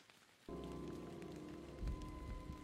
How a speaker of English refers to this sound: You continue to follow her and the clip, clip, clop, clop of the rain.